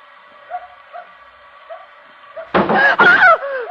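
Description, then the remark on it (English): Two loud thuds strike in quick succession as something hits the back of a car, following a steady low hum with faint, whimpery yips. “Something hit the back of the car.”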